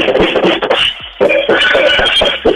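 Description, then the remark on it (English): Quick, steady drum hits played with one hand in a studio while the other hand holds a phone, a busy rhythm of sharp strikes over a ringing, muffled tone, with a brief pause near the middle before the beat picks up again. “Well, normally we bring those drum kits and we drum up a storm, but I am sitting in my studio, so listen to this.”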